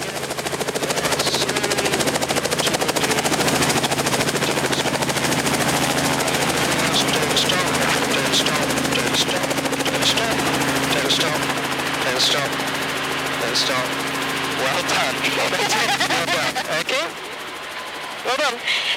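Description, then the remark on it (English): A helicopter's engine and rotors drone loudly and steadily as it descends, under control, for an emergency landing, with a thumping, throbbing texture, before the noise drops away sharply near the end as if powering down after landing. “So you're going to go down, there's no question about that, but you're still under full control, and you can choose an area on the ground the size of a tennis pitch and just put the helicopter into it.”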